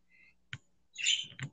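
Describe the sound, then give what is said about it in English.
A pet bird chirps and squeaks in several short, high-pitched bursts, fairly quiet overall with a louder chattering squeak in the middle. No one talks. “Sorry for my bird in the background. He wants to be talkative, so ignore that.”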